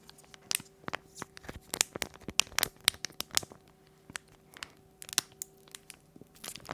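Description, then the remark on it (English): Steady crinkling and crackling of a plastic wrapper as a pack is pulled and twisted open, with sharp irregular snaps over several seconds and no talking, over a faint low hum. “Okay, let's open them. See what's inside. Let's split the pack.”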